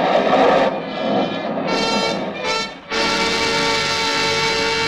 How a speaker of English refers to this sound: In a rented car, they speed at 20 miles an hour along the road to Rancocas. Professor Gurkhakov is driving, but he's none too sure of himself. Suddenly, a signpost looms up in front of the car. The car swerves and skids.